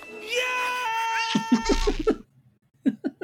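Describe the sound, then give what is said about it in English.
Mike Wazowski's cartoonish, strained yell as his fingers get caught in Roz's desk rises and sustains at a high pitch, then breaks into a series of choppy, sobbing cries; after a short silence, two or three more pained yelps follow. “My favorite, absolutely, is when Mike Wazowski gets his fingers caught in the Roz's desk, and his iconic yell.”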